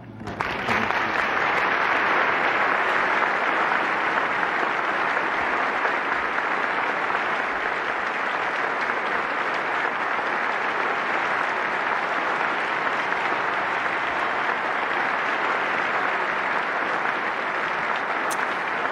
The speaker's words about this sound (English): Lots of applause. Even Dick Van Dyke, he's there. Yeah. It's an amazing moment.